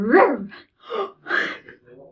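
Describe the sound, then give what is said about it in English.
A person voices a few short, soft puppy-like 'boof' barks in quick succession, moderately loud, a playful vocal imitation of a small dog. “I'm just like, boof. It's like sound effects. Like a puppy.”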